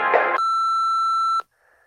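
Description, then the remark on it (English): A single sustained electronic beep, a steady pure tone lasting about a second, like an answering machine signaling to record, preceded by a brief burst of voice-like sound and followed by faint noise. “So please stop explaining. And wait until the beep.”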